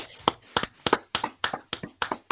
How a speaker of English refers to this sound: Let's clap it up